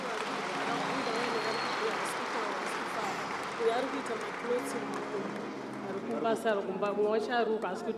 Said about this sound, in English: Come on, let's clap our hands for Jesus.